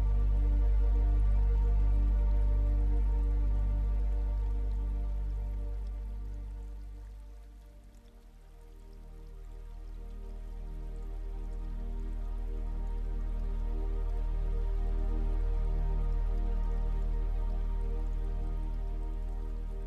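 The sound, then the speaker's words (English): Water runs steadily from a tap into a bowl for about twenty seconds, a continuous splashing flow chasing soap bubbles down the drain; it briefly softens midway before swelling back, with no voices. “Eventually, it chases the soap bubbles down the drain.”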